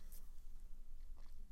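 Soft munching with a couple of brief crunchy bursts, quiet and intermittent over a low steady hum, with no talking.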